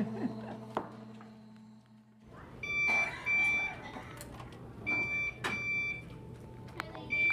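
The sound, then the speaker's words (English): A high-pitched electronic beep sounds repeatedly in short bursts at irregular intervals, fairly clear over a background of low hum, rustling and clatter. “What's that beeping noise, do you know?”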